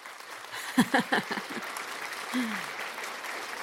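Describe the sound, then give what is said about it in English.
An applause sound effect: crowd applause, a steady wash of many hands clapping at moderate loudness, with a few sharper, louder claps standing out early on and a brief vocal whoop partway through. “That clapping sounds like the clapping like before someone comes on stage.”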